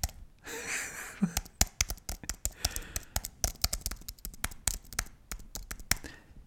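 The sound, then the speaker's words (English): A computer keyboard being handled and switched off: a brisk series of sharp plastic clicks and taps, irregular and fairly loud, with some soft rustling at the start and no talking. “Oh, wait, I'll turn the keyboard off.”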